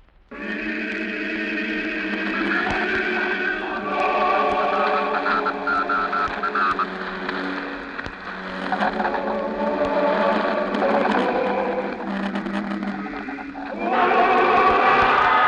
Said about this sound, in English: This is New Mexico again. We're sorry to cut in, but that roar you're hearing, the roar of the crowd, it's the moment we've been waiting for.